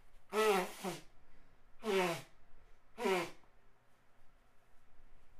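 Three loud, honking nose blows in a row, each a roughly one-second trumpeting blast with a buzzy, slightly falling tone, separated by short pauses and quiet background hiss.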